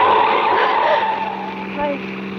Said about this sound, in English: Then we were at the mouth of the canyon, and I could see the road, dark and lonely up ahead. The car twisted and swerved.